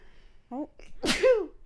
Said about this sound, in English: I just sneezed.